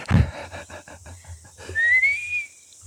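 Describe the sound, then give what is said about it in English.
Someone whistles an imitation of a bird call: a quick series of short chirpy notes, then a long, rising, sustained whistle, fairly loud with no talking over it. “Oh, that sounds like the rare spotted Manaya bird and the even rarer tui lily.”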